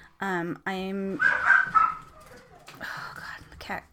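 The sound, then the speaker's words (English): A dog barks twice, loud, with drawn-out tonal barks, followed by a harsh, scratchy screech as the dog gets too close to a cat, and a few more sharp, noisy yelps. “Oh my God, this dog will not stop.”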